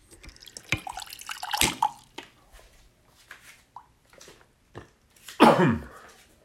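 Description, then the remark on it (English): Sounds of someone getting a drink of water: scattered clicks and drips, a couple of louder splashy bursts, and a breathy throat-clearing noise near the end, with no talking. “I need to get a drink of water.”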